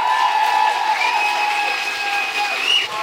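An audience claps steadily and densely for about three seconds at an even, fairly loud level, with a thin sustained whistling tone running above the clapping.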